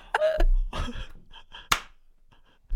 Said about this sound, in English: What'd you clap there for? I don't know. I thought it was funny.